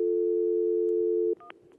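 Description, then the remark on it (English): A steady telephone dial tone hums loudly for over a second, then cuts off and gives way to a few short, higher dialing beeps against faint background noise. “That's just the dial tone for the phone.”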